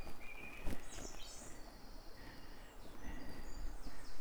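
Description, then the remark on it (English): A song thrush sings by a cabin in short, varied whistled phrases, with other birds chirping faintly in the background over steady outdoor ambience. “I've reached the cabin where a song thrush is singing.”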